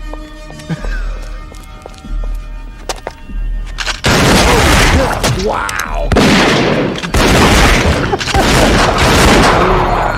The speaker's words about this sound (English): It looks like somebody, so that first like blast from the shotgun, it looks like somebody took a water balloon filled with fake blood and threw it against the wall.